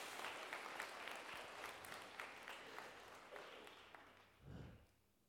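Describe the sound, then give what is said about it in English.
An audience claps steadily, a dense patter of many hands that gradually thins and fades out, with a brief low thump near the end. “You can applaud now.”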